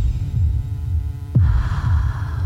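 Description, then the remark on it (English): A low, throbbing heartbeat pulses steadily beneath a dark droning hum, with a sudden swell of brighter noise midway that thickens the tense, ominous atmosphere, ending a clip from the film Water for Elephants. “Well, we leave it on a very ominous tone there. That heartbeat.”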